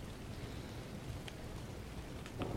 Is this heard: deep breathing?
no